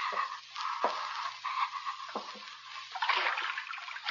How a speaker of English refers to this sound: See if water's deep. Wade through water if it isn't deep.